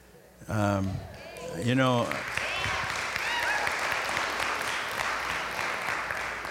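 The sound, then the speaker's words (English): A couple of short vocal bursts give way to an audience applauding, a dense, steady wash of many hands clapping that holds at an even, moderate loudness for several seconds. “I was hoping you would applaud.”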